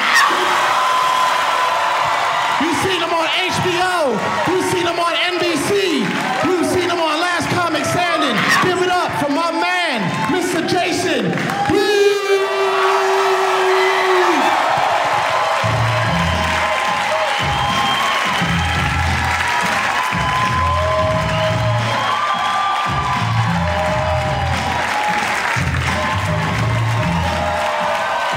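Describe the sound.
A loud crowd at a comedy show cheers, whoops and shouts over steady applause as a comedian walks on stage, many voices overlapping; the roar carries on for the whole stretch, with thumping low rumbles joining in partway through.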